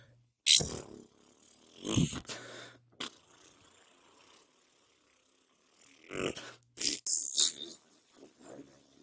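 A low, sputtering fart sound stands out among several short, loud bursts of noise separated by near silence, with scattered clicks and rattles toward the end. No one speaks.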